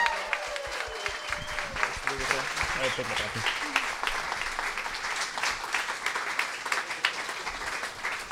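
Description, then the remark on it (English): An audience gives sustained applause for the readers, a dense rush of many hands clapping at a steady loudness for several seconds, with faint voices and a few cheers mixed in near the start. “Please give an extra round of applause for our readers.”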